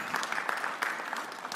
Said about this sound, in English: You should give yourselves a round of applause for that. That's extremely good work.